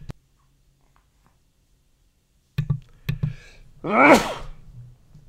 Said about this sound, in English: I think one of those sneezes made it on here.